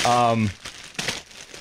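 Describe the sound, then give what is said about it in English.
Christmas wrapping paper crinkles and tears in a few quick bursts as a gift, a tortilla blanket, is unwrapped, right after a short voiced exclamation at the start. “But I got you a gift, and it's wrapped in Christmas paper.”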